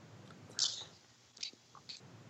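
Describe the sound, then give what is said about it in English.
A few soft sipping sounds, short wet slurps and swallows spaced over a couple of seconds against a quiet background, with no talking. Someone is taking a first sip of Hazy Bastard, an 8% juicy New England IPA from a Long Island brewery. “So literally, I'm going to take a first sip and give you a one-sip reaction.”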